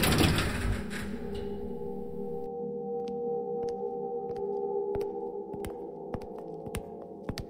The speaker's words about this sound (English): I was replete with poached eggs and awash with tea by the time he walked me to an ordinary-looking office building, where an elevator took us to the third floor.